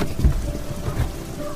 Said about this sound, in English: Getting out of the car to take a closer look, the freezing rain makes me gasp.